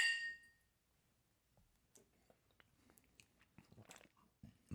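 Glasses of Jack Daniel's Tennessee Honey whiskey clink together once in a toast at the start, a bright ringing chime that fades quickly, followed by quiet sipping and soft mouth sounds, with a louder rustle at the end.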